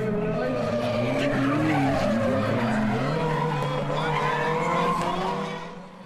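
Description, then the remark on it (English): A drift car skids sideways through a long drift, running its rear through a marked box on the course, tires squealing in wavering high-pitched tones over a loud engine roar, sustained for several seconds before easing slightly at the end. “Then you come around and you switch back the other direction, and you run the back of your car through this box, which the lads will demonstrate here, hopefully.”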